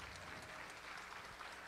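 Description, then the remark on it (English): An audience at the Bettye Davis African American Summit on COVID-19, Part 3, applauds the moderator, a dense, steady wash of many hands clapping at an even level throughout, with no voices rising above it. “Oh, and let's give a round of applause to our moderator,”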